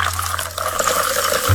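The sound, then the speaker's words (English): Three ounces of tonic water pour steadily into a tall glass filled with ice and cranberry juice, a continuous splashing fill with a bright fizzy texture and no talking. “Then, pour 3 ounces of tonic, so bubbly.”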